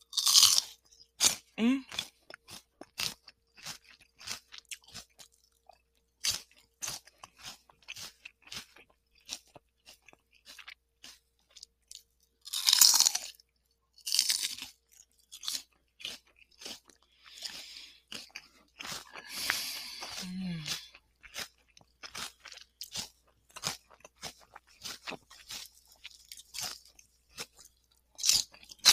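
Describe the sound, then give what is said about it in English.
Steady crunching and chewing of firm food that had been soaked for about an hour yet stayed crunchy, with sharp bites and wet mouth sounds repeating throughout, no talking. “Because even though I've been soaking it for about an hour, I can't believe they're still this crunchy.”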